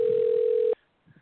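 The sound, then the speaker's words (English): A single steady electronic ringback tone of an outgoing phone call, loud and thin like it's coming through a handset, cuts off abruptly, followed by faint, muffled voices. “He's not going to pick up now.”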